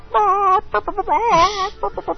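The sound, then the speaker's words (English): A person's voice mimics a chicken, producing warbling, clucking squawks in quick, uneven bursts, loud, with a higher squeal in the middle before choppy clucks resume. “And you, you love, you love when I do the chicken, don't you?”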